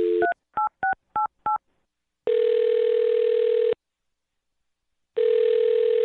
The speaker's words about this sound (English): Here we go. I'm going to dial the phone right now, okay?